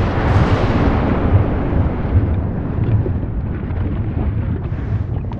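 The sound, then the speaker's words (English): A deep, steady rumbling roar from an underwater volcanic eruption in the Pacific Ocean, heavy in the low end, with recurring muffled thuds pulsing beneath a hissing wash. No one speaks. “Somewhere in the Pacific Ocean, a long, long, long time ago, like millions of years ago, a volcano erupted under the ocean.”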